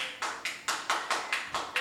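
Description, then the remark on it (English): A short burst of audience applause voting for hot dog sandwiches: about eight crisp, evenly spaced hand claps in a quick steady rhythm, moderately loud, with no talking underneath. “By a round of applause, hot dog sandwiches.”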